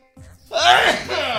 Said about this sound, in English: Uh-oh. Sneeze coming. Hold on.